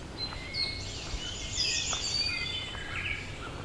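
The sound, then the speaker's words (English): An eastern towhee sings amid a busy outdoor bird chorus in the Dundas Valley, with bright, whistled phrases and trills layered over soft background hiss. “Eastern towhee.”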